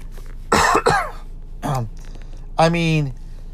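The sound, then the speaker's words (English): A person coughs twice in quick succession, then gives a shorter cough and a drawn-out, voiced throat clearing. Loud and close to the microphone, with no talking. “Excuse me while I cough.”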